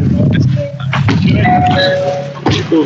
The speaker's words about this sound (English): Sorry, I got a package and. That was my doorbell, not a fucking Nokia.